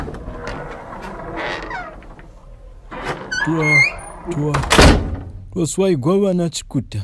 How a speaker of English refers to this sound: She was just getting on her feet when the heavy knocking and pounding accompanied by bickering over who'd speak first began.